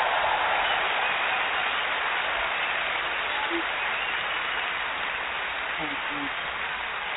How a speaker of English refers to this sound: So I want to give all of y'all a big round of applause.